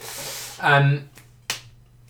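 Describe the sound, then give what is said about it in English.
A hard leather cricket ball smacks into bare hands as it is caught, one sharp slap, preceded by a brief voice over faint background hiss. “That's the sound of leather on some of those hard hands.”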